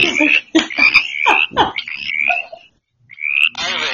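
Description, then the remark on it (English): A frog croaks loudly in a quick series of raspy, pulsing calls, pauses briefly, then starts up again with a shrill, buzzing trill. “We've got a frog on this conversation.”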